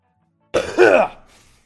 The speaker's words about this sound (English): I've still got my smoker's cough, and it probably is where I just smoke so much fucking pot. My lungs are just covered in resin.